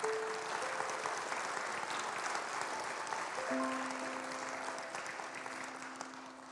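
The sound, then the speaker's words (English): A church audience claps steadily for a man who shared his story, a dense, sustained round of applause that holds at an even level before easing slightly at the end, with faint sustained tones underneath. “Can you give Grant a round of applause for me?”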